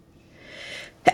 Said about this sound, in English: Sorry, I sneezed.